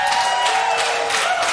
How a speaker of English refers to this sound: You got half the claps because everybody else thought you're already married.